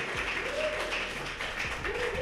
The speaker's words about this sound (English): Hip Hop, wherever you are, clap it up for Hip Hop.